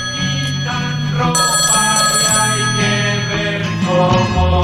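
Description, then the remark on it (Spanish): A telephone rings with the first incoming call of a phone-in quiz contest, a loud, steady melodic ringtone playing continuously throughout, with no voices. “Abrimos el teléfono, dando paso a la primera llamada.”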